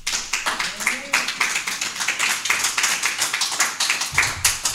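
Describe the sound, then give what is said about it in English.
A crowd gives a hand clap of praise to God, many hands clapping steadily and loudly in a dense, continuous burst of applause with rapid irregular beats, sustained throughout with a faint murmur of voices underneath. “Well, let's give God a hand clap of praise for all of that.”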